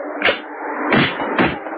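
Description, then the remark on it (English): A gallows trap door springs open with three heavy wooden thwacks, one early and two close together later, ringing out over a steady low rumbling background. “the trap door sprung open.”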